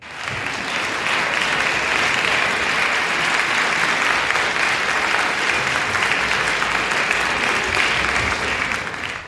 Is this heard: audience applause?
yes